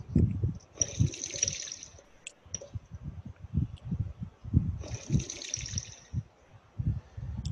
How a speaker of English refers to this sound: I keep thinking you guys are flushing something when I hear those dice roll. Nope, no flushing. I keep thinking it's a toilet too. That's why. It's really loud, isn't it?